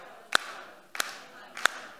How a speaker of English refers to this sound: Everybody get ready. Clap with me. You ready? No, just clap. What? Steady beat.